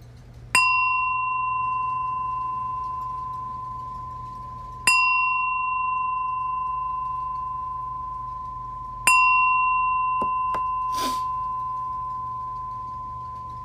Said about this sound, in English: So I'm going to ring the bell, and we're going to do a couple practices. But first, I'm going to ring the bell.